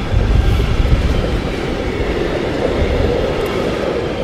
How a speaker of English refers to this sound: Or is a big train here? It's an industrial train from Germany. Loaded with sea containers.